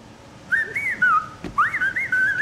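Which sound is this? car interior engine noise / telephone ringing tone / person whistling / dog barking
person whistling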